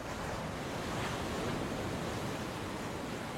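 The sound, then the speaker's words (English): Ocean surf washes onto a beach in a steady, enveloping roar, with the breaking waves blending into one continuous rushing hiss and no voices present. “You may even hear waves and the sound of the beach in the background of this recording.”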